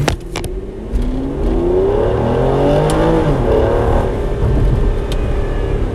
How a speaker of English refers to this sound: Yeah, when you put it in the first gear, you like go and you yeah. The jerky. It's really good too.